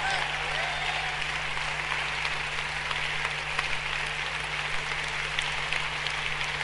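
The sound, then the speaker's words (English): An audience claps steadily together for Jesus, a dense, continuous wash of many hands that stays at an even, fairly loud level throughout, with no voices standing out. “Clap for Jesus again.”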